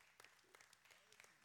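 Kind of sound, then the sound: crowd, audience applause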